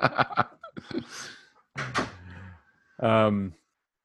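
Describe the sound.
A quick series of sharp knocks on a door, then a few more taps, followed by short bursts of a voice calling out.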